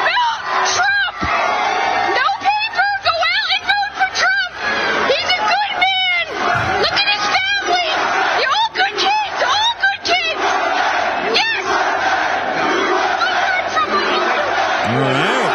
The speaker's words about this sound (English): Got some nice chants of USA in there. I can't tell what portion of the crowd is pro-Trump and against Trump because at various points, it sounds like they're cheering, screaming USA, but then they're booing him.